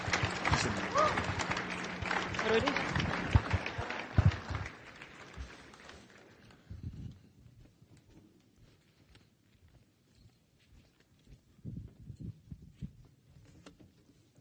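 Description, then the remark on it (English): A church audience applauds a group of students in a dense, loud burst of many clapping hands that keeps up for about six seconds, then quickly fades to scattered faint claps and quiet shuffling. “But give them a round of applause, church.”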